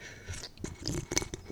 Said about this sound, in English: By the way, if you hear smashing on a table, it's just because we're smashing back some ciders and some champagne. Yeah. You know. Here's a nice slurp for you.